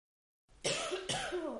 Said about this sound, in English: Get your coughing out of the way.